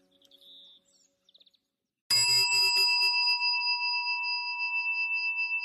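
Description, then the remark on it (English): A single bright meditation chime is struck to end a meditation, ringing out clearly and loudly before settling into a long, sustained metallic tone that hangs and slowly fades. Faint chirpy sounds precede it. “I'm allowing the sound of the chime to call you back out of your meditation.”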